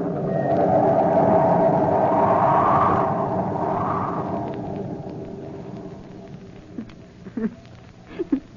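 Storm wind howls and shrieks through a ship's sails and rigging over a steady roar, loudest at first and easing off, with a few sharp creaks and knocks near the end.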